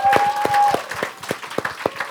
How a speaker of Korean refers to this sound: 우리 인터뷰 시작하기 전에 보이지 않는 곳에 항상 수고하는 우리 앞에서 뛰는 AD들한테 우리 박수 한번 쳐주고 갈까요?